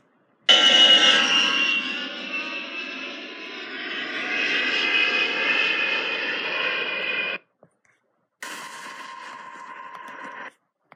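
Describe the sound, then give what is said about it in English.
A loud, steady airplane engine roar with a droning hum holds for about seven seconds, cuts out briefly, then resumes for a couple more seconds before stopping. “Get ready to board our plane to explore many unique countries around the globe.”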